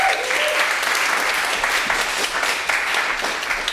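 An audience claps steadily for several seconds, a dense, even patter of many hands with no voices standing out.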